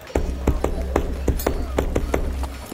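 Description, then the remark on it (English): A rhythmic patterned secret knock on the door of a house, around nine sharp raps in a steady beat, played over a low background hum. “It's a special beat knock that only Ezra knows.”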